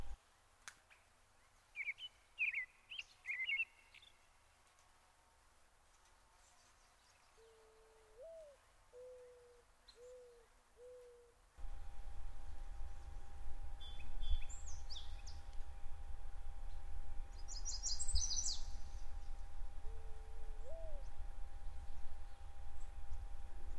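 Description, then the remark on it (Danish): Birds sing in short chirping bursts on a sunny, warm day, joined by a few soft, repeated low hooting calls; halfway through a steady low rumble and faint hum rise beneath the continuing birdsong. “Solen skinner flot, og der er dejligt varmt. Hør fuglene.”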